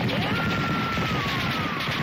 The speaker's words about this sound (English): We're just going to spray the place. I mean, we're going to do some remodeling courtesy of Smith and Wesson. Right, boys? And they all said, yeah! Right! And we fired into the air.